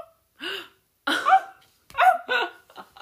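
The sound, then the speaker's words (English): A voice imitates a barking, seal-like croup cough: four harsh, high-pitched honking bursts in a loose, uneven rhythm, with brief silences between them and no speech. “And croup is a cough that kind of sounds like a seal that's barking.”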